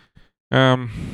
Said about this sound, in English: Stop it! I'm getting fucking face-fucked by yawns here.